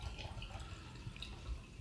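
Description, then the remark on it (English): Wine is poured from a bottle into cups in a soft, steady trickle with a few faint drips and gurgles, quiet, with no one talking. “Actually, let's just fill the cups all the way up.”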